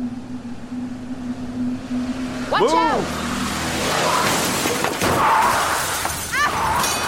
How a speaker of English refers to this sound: The truck crashed through the front door, smashing through a booth and into the counter.